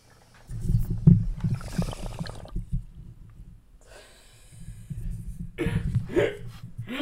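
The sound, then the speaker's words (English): Bong water bubbling in low, rapid gurgles, in two stretches separated by a short pause; the second burst comes with breathy, hissing inhales. No one speaks. “Did you hear the bubbling?”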